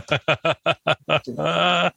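A goat bleats in a quick stuttering series of six short nasal cries, then lets out one longer drawn-out bleat, loud with no talking over it.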